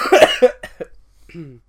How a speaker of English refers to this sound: keeps coughing. Sorry.